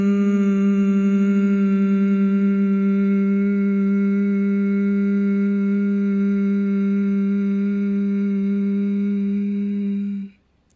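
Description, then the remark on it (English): Several voices hum together on one long, steady, closed-mouth note on a breath out after a deep breath into the belly, blending into a rich, even tone that holds for about ten seconds before fading out. “And let's just do a beautiful long hum out.”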